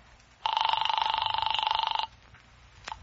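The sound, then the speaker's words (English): A single burst of an old telephone bell ringing, a rapid metallic trill lasting under two seconds, fairly loud, followed by near silence and a couple of faint clicks. “I grabbed the phone on Ryan's desk and I called Hellman.”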